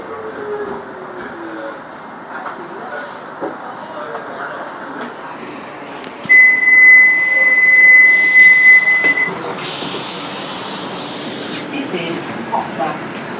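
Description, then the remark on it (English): A passenger train rumbles steadily along the rails at Poplar, heading towards Stratford, continuous, with a sharp, sustained metallic wheel squeal rising for a few seconds midway and a muffled voice underneath. “Side of the train at Poplar is the DI depot.”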